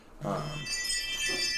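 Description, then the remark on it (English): A doorbell and a Ring home alarm go off: a low, steady electronic tone gives way to a bright, high, ringing chime that sustains and shimmers for over a second, with a faint voice-like murmur underneath. “I don't know if you heard the bell and my ring alarm.”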